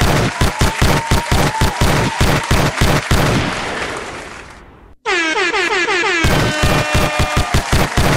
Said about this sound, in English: And hand claps for the motherfucking podcast winning, damn it.